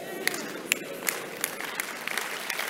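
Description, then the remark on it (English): An audience claps for Jesus during a sermon, together in a steady, rhythmic beat. Sharp, bright claps land about every third of a second over a continuous wash of crowd noise. “Let me say that again for those who didn't clap for Jesus.”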